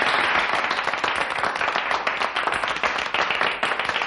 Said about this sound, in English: Gentlemen, thank you for your generous applause.